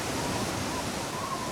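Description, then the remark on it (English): A steady, roaring rush of churning water from a massive whirlpool swirls continuously, loud with no breaks or other sounds. “until a massive whirlpool sucked the ships towards it.”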